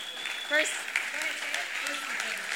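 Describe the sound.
A crowd claps together in steady, dense applause for the speaker's brother, a Marine lieutenant soon to be deployed. The applause holds at an even level throughout, with a few faint voices and whoops mixed into the clapping.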